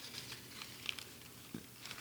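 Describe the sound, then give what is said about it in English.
Soft, irregular crinkling of a brown paper bag holding a bottle for a blind tasting, with small crisp bursts scattered through a low, steady rustle and no voices. “Can you hear me rustling the bag?”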